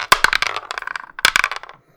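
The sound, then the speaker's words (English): Dice clatter across a hard table in two quick rolls during a tabletop role-playing game, each a rapid burst of sharp clicks that tumble and settle into silence. Fairly loud, with no talking. “Have your dice?”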